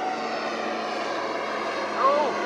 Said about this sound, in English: No, wait a minute. There's a small plane heading towards me. Is it a fighter plane?